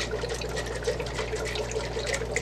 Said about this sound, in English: Now here's our decapsulated brine shrimp eggs again. I'm gonna go ahead and shake those up.